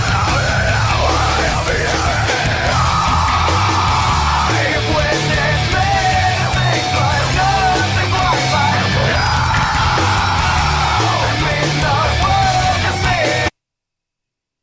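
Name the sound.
screamed vocals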